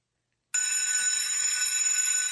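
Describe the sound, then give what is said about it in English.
After a brief silence, a school bell starts ringing and doesn't stop: a loud, continuous, shrill metallic clatter at an unchanging level, with no voices. “that is clearly a school bell.”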